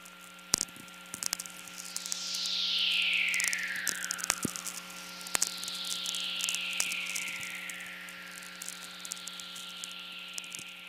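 Two soft, hissy natural VLF radio whistlers, fairly rare, recorded at 5:24 a.m. on Monday 22 June 1998 at Belly River Campground, Waterton Park, southern Alberta, Canada, sweep slowly downward in pitch, each lasting a few seconds, over a steady electrical hum and a scattering of sharp crackling clicks.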